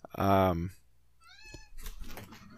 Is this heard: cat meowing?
yes